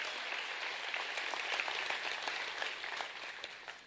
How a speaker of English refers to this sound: Somebody give God a praise like I'm helping you today. Come on, you can clap a little bit better than that.